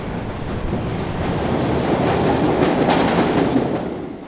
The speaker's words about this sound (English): Okay, I can feel the wind coming through, so I guess that is. Here comes the train. Here comes. Yeah. Okay, I'm going to step back.